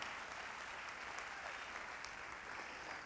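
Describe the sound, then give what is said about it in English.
An audience claps their hands to the Lord in praise, a dense, steady wash of many overlapping claps that holds at an even, fairly loud level for about three seconds with no voices. “It's everybody to clap our hands to the Lord.”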